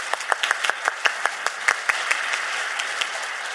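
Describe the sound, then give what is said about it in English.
A debate audience applauds steadily for a few seconds, a dense wash of clapping with individual sharp claps popping out near the start, fading slightly toward the end. “And what you demonstrated is something I think that we can all applaud.”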